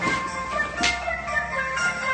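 A mobile phone rings during a live session with a bright, melodic ringtone, a steady run of electronic notes repeating at a moderate level with no one speaking over it.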